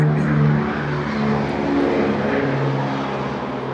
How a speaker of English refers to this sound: Whenever I hear airplanes, I'm reminded after 9/11, you guys, some of you that are, not real young, no flights flew for 3 days. You remember that? And I remember it was like Friday, the flight started up again, and I heard an airplane in the sky